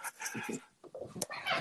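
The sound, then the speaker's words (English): Dogs in a house make a string of short whines and yips, several quick bursts overlapping in a busy, uneven rhythm with no one talking. “I'm going to go in the corner of my house away from my dogs.”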